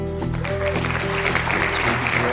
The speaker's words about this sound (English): So you're clapping now. We'll see if you're still clapping in just a second.